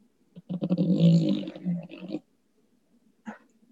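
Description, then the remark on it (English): A loud, rasping snore from a French bulldog sleeping on a person's lap, one long rattling breath followed by a quieter snort a moment later. “We have our Frenchie. She's over here sleeping on my lap and snoring extremely loud.”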